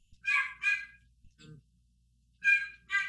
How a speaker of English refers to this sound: They're all going to go bark again. I'm sorry.